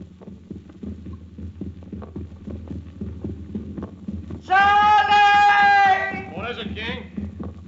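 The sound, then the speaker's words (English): A steady, muffled heartbeat throbs low, picked up by a contact microphone placed beneath a drugged, sleeping person's body a few inches from the heart, with a loud bleating animal cry bursting in near the end. “The throbbing. You hear it. It's heartbeats and breathing.”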